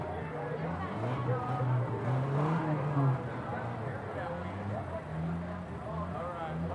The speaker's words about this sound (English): Nope, that's a soft-top Jeep Wrangler in four-wheel drive, plow through mud.